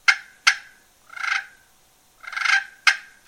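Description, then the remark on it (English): Sharp, clicky turkey clucks from a glass friction call alternate with two soft, rolling purrs, played alone at moderate volume. “Cluck and purr.”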